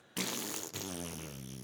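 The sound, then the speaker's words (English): A voice imitates a long, flappy fart: one sustained buzzing, sputtering raspberry lasting over a second, loud, with a brief break partway through before it rattles on. “I farted for like 10 seconds straight.”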